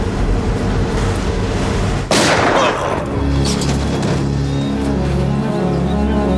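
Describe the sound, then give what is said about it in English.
A sudden loud gunshot cracks over the steady, rumbling engine of an armored car driving down a road in a film scene, as a guard in the back of the truck shoots a guard in the front, followed by a lingering low boom and a sustained mechanical drone. “I swear to God, the guy in back shoots the guy in front in a way that looks like he shoots him right in the ass.”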